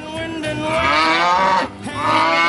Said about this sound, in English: How did a cow get in here?